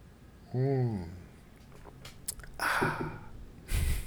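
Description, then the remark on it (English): Sipping of water: a short voiced sound, a few small wet clicks, then a breathy slurp and swallow, ending with a soft exhale. No one talks. “Now, I'm going to pause momentarily and sip this water.”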